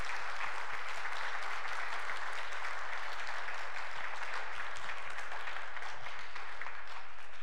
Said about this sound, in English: So in addition to the contributions, let's just give them a round of applause to express our thanks.